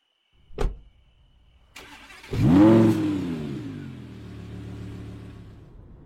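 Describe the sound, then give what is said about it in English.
A sharp click, then a car engine cranks and catches with a loud rising rev before settling into a steady, lower hum as the car pulls away. No voices. “Looks like her car is wrecked. Shit. Let's take mine. I'll drive.”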